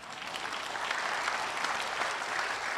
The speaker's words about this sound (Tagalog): Mahinang pumalakpak ang mga tao rin.